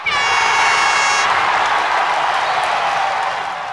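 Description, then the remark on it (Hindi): Loud, dense, steady applause from a crowd for the winner of a quiz fills the whole moment, with a brief bright tonal sound layered over the start before the clapping tapers slightly at the end. “इनके लिए जोरदार तालियां।”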